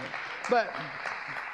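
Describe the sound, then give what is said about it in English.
Audience applause at a service at Grace church fills the moment with a steady, dense patter of clapping at moderate volume, and a brief voice cuts through early on. “Yeah, that got some applause.”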